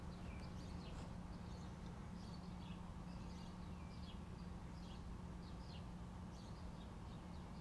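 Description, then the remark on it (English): Faint birds chirping before dawn, at 5:05 a.m. on Thursday, April 15th, 2021, in short repeated bursts throughout, layered over a steady low background rumble, with no voices present. “I didn't realize the birds woke up so early.”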